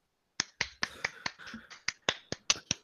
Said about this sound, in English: Yeah, I'm clapping over here too.